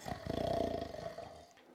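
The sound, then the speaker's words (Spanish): A single deep, rattling snore from a black giant, a long, rough, growling breath that swells loudly and then trails off after about a second and a half, with no talking. “Le dejamos roncar un rato.”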